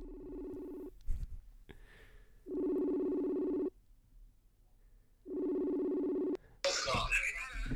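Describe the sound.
An outgoing call to a co-host's sister, with caller information not withheld; the ringback tone purrs in steady, evenly spaced bursts, about three rings with quiet gaps between, before someone picks up and a voice starts talking.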